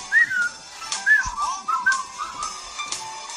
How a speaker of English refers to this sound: When you're feeling in the dumps, don't be silly chumps. Just purse your lips and whistle. That's the thing.